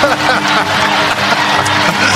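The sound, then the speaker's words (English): A loud, steady roar of a stadium crowd at a Spurs game cheering for the Coyote mascot, a dense wash of many voices sustained without pause for the whole couple of seconds. “And the crowd is jacked!”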